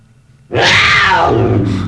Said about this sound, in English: So now we have a dead donkey, a dolphin, a coyote, and a cougar in here. No, the cougar's in the lobby.